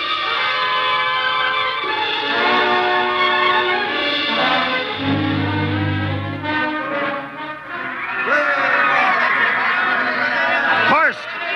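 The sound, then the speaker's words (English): A dense crowd gathered around a ship clamors all at once in a welcoming celebration, with shouts, whoops and high wavering cries layered over a steady roar of chatter. “Crowd around the ship. Looks like we're being welcomed with a celebration, Captain.”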